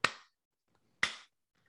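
Two sharp, isolated hand claps spaced about a second apart, a slow deliberate clap. Each one is crisp and close with a brief ringing decay, and there is no talking.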